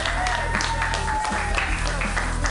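An audience claps steadily, a dense, even wash of many hands at constant loudness, with a faint sustained tone running underneath for the first second or so.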